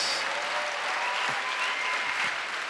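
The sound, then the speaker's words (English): An audience claps for the love of Jesus in a steady, dense wash of applause that stays loud and even throughout, with many hands blending into continuous noise and no voices rising above it. “Clap for the love of Jesus.”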